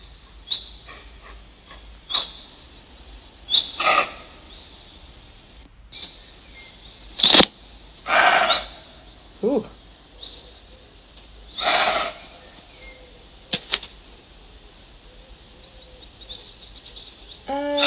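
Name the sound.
deer call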